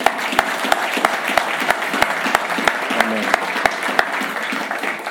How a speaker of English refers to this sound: There's times when we clap hands for the ministers, clap hands for God. Let's approach it different this morning. Let's clap hands for ourselves.